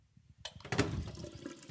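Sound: tap water running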